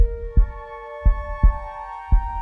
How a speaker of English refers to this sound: And with that heartbeat, he tells her, we're going to the Overlook.